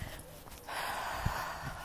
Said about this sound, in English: Okay, so as slow, like literally as slow as you can, lengthen the breath, almost like a yoga breathing or Pilates breathing. Just as long as you can. Really long, deep inhale.